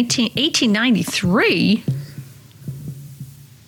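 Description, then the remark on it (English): A recording of the Earth's Schumann resonances: a low, steady electrical-sounding hum throbs with soft, irregular pulses like a slow heartbeat, following a brief stretch of sweeping, wavering vocal tones at the start. “Schumann resonances, heartbeat of the earth is what they call it.”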